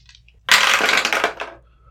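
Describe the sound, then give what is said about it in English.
Dice rolling, landing on a 20: a sudden loud burst of rattling clatter that lasts about a second, crisp and bright, then tapers off in a few scattered clicks as the dice settle. No voices. “That's me rolling.”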